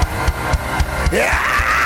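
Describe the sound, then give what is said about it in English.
A large church audience bursts into loud, sustained screaming and cheering in agreement with a preacher's sermon on speaking in tongues, one voice sweeping upward as the roar swells, over a steady thumping beat. “Can you scream like you agree with what I'm saying?”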